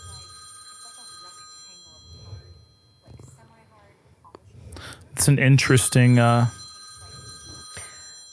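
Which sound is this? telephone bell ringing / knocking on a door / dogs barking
telephone bell ringing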